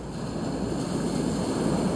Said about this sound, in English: The sound of the sea as my new life is in motion. A private yacht sunrise sail along Newport Beach's beautiful, beautiful ocean.